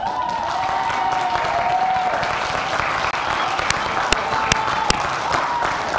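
A crowd of middle schoolers cheers over steady, dense applause for their new middle school director at Mosaic. A few sharp whoops and whistles cut through near the end.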